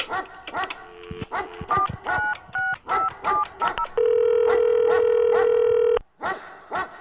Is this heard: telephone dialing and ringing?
yes